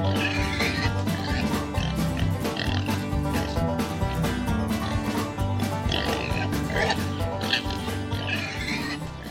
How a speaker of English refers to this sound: And hey, Paul, there's that pig! Get him!